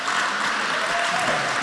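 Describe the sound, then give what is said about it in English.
A crowd claps its hands for the Lord in dense, sustained applause, a steady wash of overlapping claps with no single rhythm, holding at an even loudness throughout the short stretch. “Now today, let's give the Lord a big hand clap for the freedom.”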